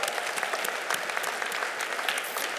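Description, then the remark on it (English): A steady round of applause from an audience in a room, applauding the progress of the people there, with many hands clapping densely and continuously at a moderate level and no voices standing out above the clapping. “Yeah, give a round of applause for the progress in this room, ladies and gentlemen.”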